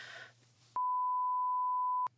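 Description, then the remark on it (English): A single loud censor bleep, a steady pure tone lasting over a second that cuts in and out abruptly, following a brief burst of muffled noise and low hum. “It's a good thing it's all beeped, otherwise, they would come for you.”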